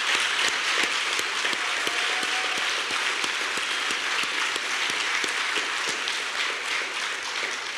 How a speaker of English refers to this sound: Could you stand for a moment? Let us just give you a round of applause. Active duty and veterans.